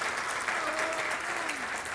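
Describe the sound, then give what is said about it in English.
A steady wash of audience applause, many hands clapping at once in a dense, continuous patter that holds an even level throughout, with no one speaking over it. “And it is, yeah, a round of applause.”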